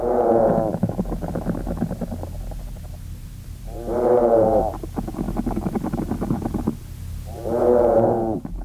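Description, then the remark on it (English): Low, mooing vibration calls from a group of treehoppers, insects recorded in the field, swell up in three synchronized bursts, each a rich harmonic drone lasting about a second, separated by quieter buzzy, crackling stretches. “what you heard was exactly a synchronized set of moos from some individuals that were already in a”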